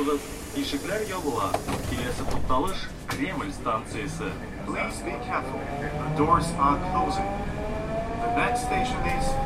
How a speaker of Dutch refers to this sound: Wanneer de omroepstem van de metro als laatste in het Engels omroept dat de deuren gaan sluiten, rijden we al en lijken de drie talen wat veel om bij elke halte op te moeten wachten.